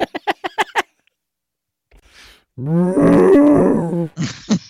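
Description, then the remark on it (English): Five quick sharp clicks, a soft breathy rustle, then a person imitates a cow's moo: a loud, drawn-out, low groaning bellow that sounds more like a roar, ending with a short rasp. “That is not the sound a cow makes at all. No, that's like a dinosaur.”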